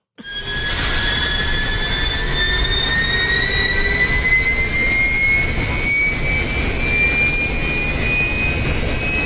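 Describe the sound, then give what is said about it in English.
In-car audio of an electric race car accelerating hard down a straight: several high whining tones from the electric motor climb steadily in pitch over a constant roaring rumble of drivetrain and road noise, with no voices. “That was the in-car as it accelerated down a straight.”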